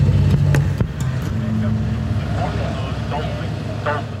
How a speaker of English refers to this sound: Boats just slowed down to a halt, and just all around us now there are the backs of bottlenose dolphins breaking the wave.